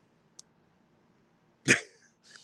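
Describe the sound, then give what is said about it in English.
A single sharp bark from an upset dog rings out after a faint click, followed by a softer trailing noise, with no talking. “Even the dark fucking dogs over there getting upset.”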